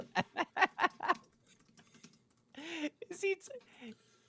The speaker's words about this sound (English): Are you responding to someone's question? Oh, guest chat. Or are you typing a dirty message to us?